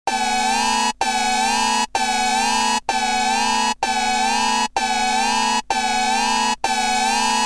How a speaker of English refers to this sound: I'm going to set off the spoiler alarm so you can skip ahead a few minutes.